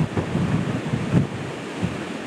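A road sign shaking in hurricane wind, giving a few dull rattling thumps beneath a constant, heavy roar of gusting wind buffeting the microphone; no one speaks.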